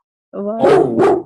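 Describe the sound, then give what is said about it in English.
A dog next door lets out a short whine that breaks into two quick, loud barks, clear, with no talking over it. “There's this dog next door.”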